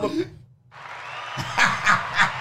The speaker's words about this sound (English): Which one's the round of applause button?